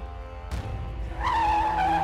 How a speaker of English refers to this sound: The truck squealed to a stop, sending Jin crashing into the man beside him.